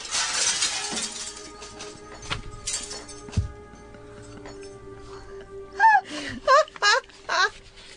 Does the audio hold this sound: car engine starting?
no